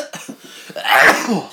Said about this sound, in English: Let's step closer to the mic so we can sneeze into it, guys. I get bad hay fever in the summer.